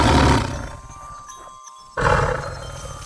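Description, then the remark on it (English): An old big cat lets out a loud roar, a rough rumbling burst that fades into quieter growling before a second deep roar surges back. No one speaks over it. “He is quite proud of his roar.”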